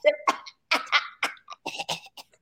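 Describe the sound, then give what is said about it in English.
A voice mimics coughing with a quick run of short, raspy bursts, about eight or nine, in an uneven, exaggerated rhythm with brief gaps between them. “Vagina walking around coughing.”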